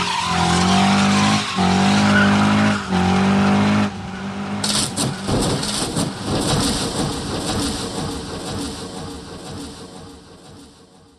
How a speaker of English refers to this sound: And if you think it's fun watching two football players run into each other head first at 20 miles an hour, how about 20 cars crashing into each other at 180?